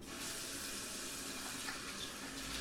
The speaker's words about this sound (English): In the bathroom, splashing water on my face.